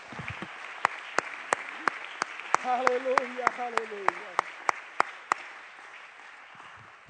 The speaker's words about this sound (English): Would you clap your hands and thank him right now?